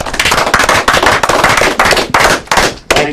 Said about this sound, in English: Clap it up.